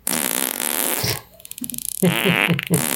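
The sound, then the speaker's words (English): A loud fart sound effect from a random fart sound button on a soundboard, lasting a few seconds, shifting from a broad buzzy blast to a sputtering, rippling flutter and then a wet, brassy squeal at the end, with no talking. “You also have your random fart sound button.”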